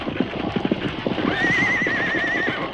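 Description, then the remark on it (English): Rapid hoofbeats of runaway horses clop steadily and loudly while a horse lets out a long, wavering whinny midway through, both sounds continuing together to the end. “You can't stop them horses. They'll pull you right along.”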